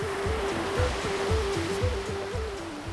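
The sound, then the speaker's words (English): A steady wash of Atlantic ocean surf near Milltown Malby in County Clare, Ireland, rolls on without pause, with a soft melodic tune and low rhythmic notes playing over the roar. “went to hear some of those tales by the ocean near Milltown Malby in County Clare.”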